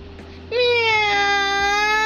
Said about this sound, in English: Meow! It was a cat.